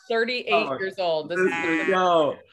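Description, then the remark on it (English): A person loudly imitates a goat's bleat, a warbling, quavering vocal cry sustained for a couple of seconds with a few breaks. “Goat noises.”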